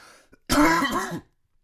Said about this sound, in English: No, I don't have COVID. That's a smoker's cough.